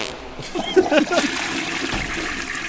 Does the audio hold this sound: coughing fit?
no